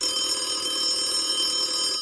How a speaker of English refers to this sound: The phone rings, and we stopped doing the puzzle.